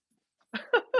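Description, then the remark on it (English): The speaker's dogs, Happy and the little one Sunny, bark excitedly: three loud, rapid yelps starting after a brief silence, each one sharp and harmonic, arriving in quick succession with no talking over them. “Hold on. My dogs are going crazy.”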